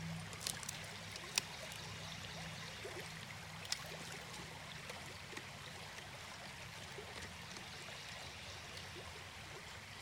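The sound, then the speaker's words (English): Water runs steadily into a filter water bottle, a continuous splashing trickle with a low hum underneath and a couple of sharp clicks. No one speaks. “got this new water bottle that has this filter”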